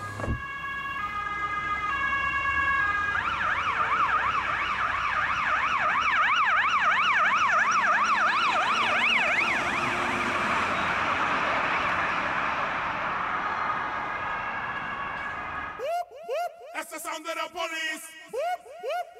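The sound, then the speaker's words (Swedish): A loud emergency vehicle siren passes by, switching from a two-tone hee-haw to a rapid warbling yelp for about fifteen seconds before cutting off as voices begin talking. “Oj, nu kommer en utryckning.”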